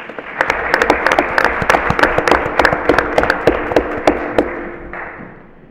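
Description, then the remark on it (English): An audience claps steadily for three student vocalists chosen in Sussex County for the All-State Junior Choir, a dense wash of overlapping hand claps with sharper individual slaps standing out, holding for several seconds before thinning toward the end. “So give them a round of applause for that as well.”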